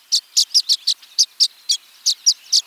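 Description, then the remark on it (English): Violet-green swallows chirp in a quick, uneven series of about a dozen high, bright twittering notes, clear with no voices or other sounds. “Once nesting season ends, these violet-green swallows seem to know it's time to party.”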